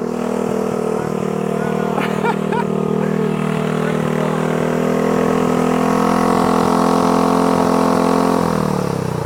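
A motorcycle engine runs loud, driving Rider Justice's motorcycle-powered smoothie blender with a steady, droning hum that holds an even pitch before winding down near the end; it must get up to at least 30 miles an hour to blend.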